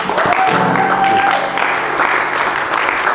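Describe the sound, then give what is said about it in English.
A church audience breaks into loud, sustained applause for the Lord after a prayer, dense clapping with a few cheers and a brief sustained tone rising over it early on. “Let's just give the Lord a round of applause.”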